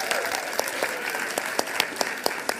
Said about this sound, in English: Yeah, keep clapping. It's awkward.